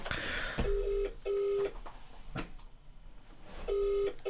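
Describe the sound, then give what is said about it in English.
An outgoing phone call's ringback tone plays in a steady double-pulse pattern, two short buzzing tones, a pause, then the pair again, clear over a faint hiss. “Here we go. It's ringing. No. It's ringing.”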